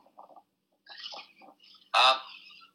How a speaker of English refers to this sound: I'm outside, I've got a lot of birds chirping around here. It's so great.